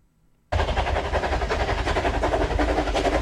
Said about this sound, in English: Goes from one ear to the other as a steam train. Choo choo!